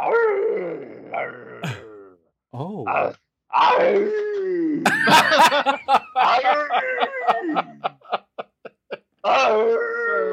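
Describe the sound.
A man's voice mimics a werewolf transformation: groans and throaty growls rising into a howl-like whine, then a burst of quick panting yelps before one last drawn-out snarl.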